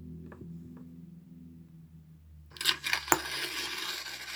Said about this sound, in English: I'm going to read a poem called Termites, and it is in response to Tokerau's choice of the sound of paper being ripped.